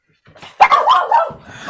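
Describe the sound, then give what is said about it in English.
A dog lets out a loud, harsh bark with a rough, growling edge, drawn out briefly and then cut off, alone with no talking over it. “That was an aggressive bark.”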